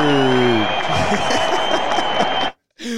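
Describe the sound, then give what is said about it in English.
A crowd cheers and claps loudly in a dense, sustained burst of applause and whoops, which cuts off abruptly into brief silence before the sound picks up again. “We got a hype crowd.”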